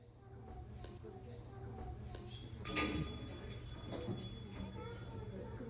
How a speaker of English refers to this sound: So there we can hear the bells ringing on the dice tower.